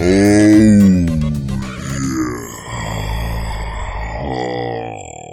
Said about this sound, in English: It sounded like a yawn.